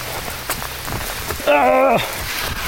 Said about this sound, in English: And bloody hell, it's really pelting it down with rain. I'm trying to be profound here. It's difficult when you're running in the rain.